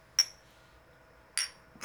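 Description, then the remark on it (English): Shot glasses clink together in a toast: two sharp, bright chinks with a brief high ring, about a second apart, then the start of a third right at the end. No talking. “All right, everyone, grab your shot glasses.”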